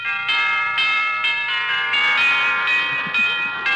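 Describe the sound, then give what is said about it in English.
A doorbell at the front door of an old colonial mansion rings out in a bright, ringing chime, struck again and again about twice a second, each tone overlapping the last into a loud, continuous cascade with no voices. “Rather early when I drove up to the front door of that impressive old colonial mansion, and I rang the doorbell.”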